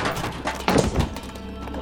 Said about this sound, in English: But before she had taken 2 steps, she banged her shin into an umbrella stand in the hall and fell sprawling to the floor.